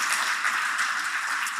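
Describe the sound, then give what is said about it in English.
A crowd claps together in a steady, dense wash of applause that holds at an even level throughout, with no voices heard. “Yeah, that scripture's worth a clap.”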